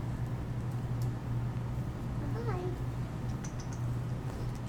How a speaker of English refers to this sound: Oh, my God. It's so cute. A little lightheartedness right now. There's a cute kitty.